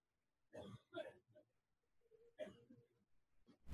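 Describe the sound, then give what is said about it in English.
Several short, throaty coughs from one person, two in quick succession and then another after a pause, with rough breathy sounds in between. “Give me a second, I got a cough.”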